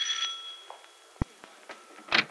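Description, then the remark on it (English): A doorbell rings once in the afternoon, a bright metallic chime that hangs and slowly fades, followed by scattered soft clicks and bumps and a brief rustle near the end. No one speaks. “And it's about the center that she's most willing to talk this afternoon as the doorbell rings.”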